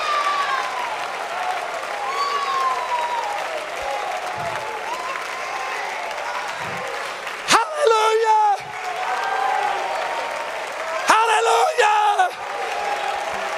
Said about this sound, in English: We can stomp our feet.